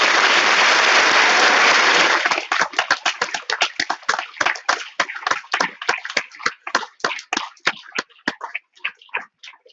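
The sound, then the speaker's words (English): An audience applauds partners from NAMI: a loud, dense burst of applause for about two seconds, then thinning out into a steady run of individual claps that keep a brisk, fairly even rhythm until the end. “Let's give our partners at NAMI a hand today.”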